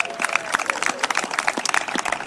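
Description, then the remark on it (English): A crowd in Oakland applauds a young football team, many hands clapping in a dense, steady patter of sharp claps that holds at a moderate level for a couple of seconds, with a faint murmur of voices underneath. “Give our young people a round of applause.”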